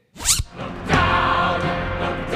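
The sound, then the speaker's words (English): A zipper is pulled in two strokes, a quick short zip followed by a longer, steady raspy pull. It is fairly loud, with no voices. “Look down at the zipper on your pants.”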